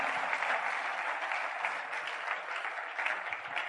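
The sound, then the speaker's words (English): An audience claps their hands for the Lord in sustained, dense applause, the many overlapping claps forming a steady wash of sound that holds at an even level throughout. “Clap Amen. Your hands for the Lord.”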